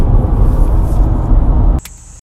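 Cicadas buzz in a steady, high-pitched drone, heard from a fishing boat on the water. Loud rushing noise covers most of it, then drops away near the end, leaving the thin electric whine clearer and alone.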